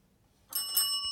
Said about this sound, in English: Couldn't find the bell there. I was like reaching around for it.